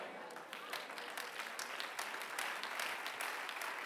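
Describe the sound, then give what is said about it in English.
An audience claps steadily for several seconds, a dense wash of many hands that swells slightly toward the end, with no voices over it. “I'm not just trying to excite you, so I don't need you to clap about this, but I'm trying to make sure my heart is focused in at the right place.”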